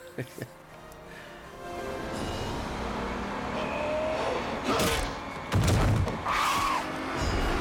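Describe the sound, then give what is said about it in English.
A double-decker bus rumbles under a bridge at about 3 miles an hour during a film shoot, its engine a steady low drone, broken by a few loud crunching bangs near the end as it scrapes through, with voices faintly underneath. “This whole sequence with the bus going under the bridge, the bus was going maybe 3 miles an hour.”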